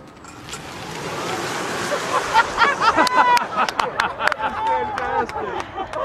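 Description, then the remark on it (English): A car test-driven by the President accelerates with a rising, steady rush of engine and road noise that swells over the first couple of seconds, while voices talk and exclaim over it. “Not unless you get in front of the car as I step on it.”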